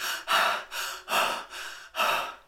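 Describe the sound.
Loud, heavy panting of a woman: about six quick, breathy in-and-out gasps in a steady rhythm, catching her breath after creating a powerful tornado, with no talking.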